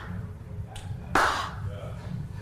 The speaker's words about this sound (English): You just hear... Oh my god. Slow clap.